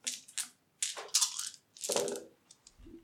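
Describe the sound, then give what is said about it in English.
Eight dice are rolled for a technology roll, rattling and clattering in bursts, clicking against each other and tumbling onto a hard surface, moderately loud, ending with a soft settling knock. “Okay, I got 8 dice then.”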